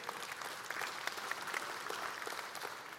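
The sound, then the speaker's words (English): An audience applauds steadily after a film clip in which Valjean faces his accuser. A dense patter of many hands clapping at once, with no voices rising above it, holds an even, moderate loudness throughout. “Yeah, you can clap for that, absolutely.”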